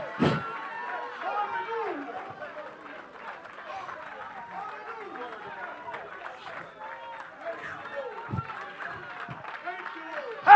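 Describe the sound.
A church audience claps and shouts together in praise, giving glory to God; a dense, steady wash of overlapping raised voices and scattered clapping that holds for about ten seconds, with a few sharper bursts.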